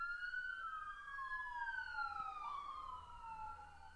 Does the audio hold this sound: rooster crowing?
no